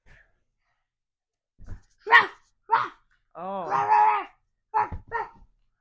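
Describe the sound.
A child on all fours mimics a dog barking: a handful of short, sharp yaps, one longer drawn-out bark in the middle, then two more quick ones, fairly loud.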